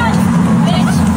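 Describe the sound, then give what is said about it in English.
A car rolls past with a steady, loud low rumble that holds evenly through the brief moment, with faint murmuring voices in the background. “Car rolls by. Did you hear it?”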